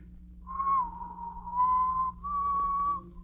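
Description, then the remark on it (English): Someone whistles the wedding march off-key in three long, wavering phrases that barely change pitch, over a low steady hum with no talking. “What's that you're whistling? Well, I guess you'd never know from the sound of it, but that's the wedding march.”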